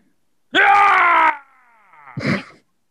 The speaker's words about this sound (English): That's the primal rage that you exhibit whenever you do something like that. You just stand up and scream.